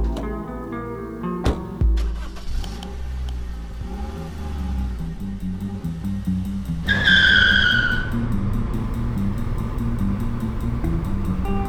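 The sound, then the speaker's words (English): A truck engine revs hard, then its tires let out a loud, sustained screech as it skids and speeds away, the engine roaring on underneath. No one speaks. “We gotta get out of here. You don't gotta ask me twice. Come on, get in the truck.”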